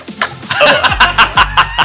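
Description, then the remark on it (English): A voice imitates a solo wah-wah effect: a quick run of about seven rhythmic, sweeping vocal bursts, fairly loud, with no speech around them. “I want to give you just a solo wah.”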